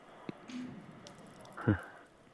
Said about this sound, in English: Ooh, those bubbles sounded great. That can we get more of those? Crazy sounding. It's like a mouthful of Pop Rocks.